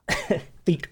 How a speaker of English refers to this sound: Is that aloe? It shouldn't be making you cough. If anything, it should be making your throat even smoother, right?